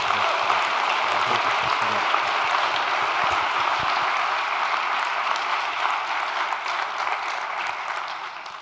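A crowd claps steadily for several seconds, a dense, sustained wash of applause that stays loud throughout and tapers only slightly at the end, with no voices over it.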